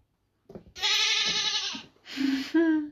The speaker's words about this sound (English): Goat.